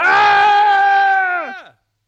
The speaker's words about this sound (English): I wonder why we're yelling every once in a while.